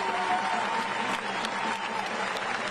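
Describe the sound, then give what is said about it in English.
A crowd in Kenosha applauds the Blake family for how they managed themselves in court, a steady, dense wash of many hands clapping at even loudness throughout, with no voices rising above it. “And what I'd like for you to do for me and for all of us here in Kenosha, because of their grace and because of their dignity, let's give them a round of applause for the way that they have managed themselves in court.”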